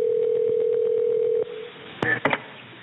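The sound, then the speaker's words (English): A steady telephone dial tone hums for over a second, then cuts off; after a short pause, a few quick, thin electronic keypad beeps follow as a number is dialed. It is the start of a phone call to the DEP on January 9, 2014, about the Elk River chemical spill near Charleston. “She brings us the story of the Elk River chemical spill, a story that begins with a phone call.”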